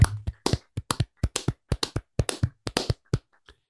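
A small group claps briefly to close out a Mouse Madness bracket on the scariest Walt Disney animated scene: about eighteen sharp, uneven hand claps over a few seconds with no talking, tapering off to a last faint clap.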